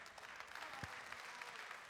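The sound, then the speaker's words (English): A church audience claps steadily, a dense, even wash of many hands patting at once for about two seconds, fairly soft, with no voices standing out. “If you're clapping for that, you rock.”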